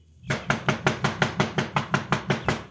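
Knocking on a heavy front door with the knuckles, about a dozen quick, evenly spaced raps with a solid, low thud behind each strike, loud and steady with no voices.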